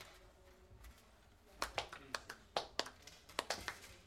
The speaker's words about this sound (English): I was quite fine with the mocking golf clap. If it was their way of rookie hazing, good for them.